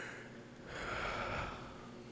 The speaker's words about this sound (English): And you can hear him yawning as he lies down in the bed.